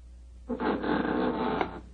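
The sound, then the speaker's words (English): The front door swings open as somebody comes in, a sustained rough scraping creak lasting about a second, ending with a small knock. It is moderately loud, with no talking over it. “There goes the front door.”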